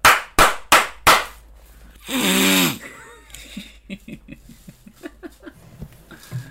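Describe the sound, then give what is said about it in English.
Four sharp, loud slaps in a quick steady rhythm, followed by a harsh, congested nasal honk and then a run of short mumbled vocal sounds. “So, if I read that correctly, it is four slaps in a congested allergy season.”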